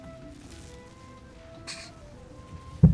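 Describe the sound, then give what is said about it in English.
A cat lets out one brief, sharp noise amid a quiet, murmuring background, followed moments later by a sudden thump. “Your cat is in trouble. Bad My kitty.”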